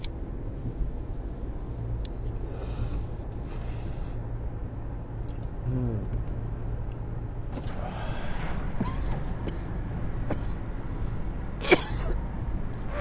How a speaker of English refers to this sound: Ooh, that cough gave me real lightheaded and I'm driving. That was a little scary. Whoa, that was a little bit scary.